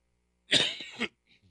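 A single loud, harsh cough bursts out, with a short second push at the end, followed by a faint little rustle and then silence.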